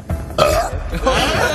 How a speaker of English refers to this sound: And then … responds with an almighty belch.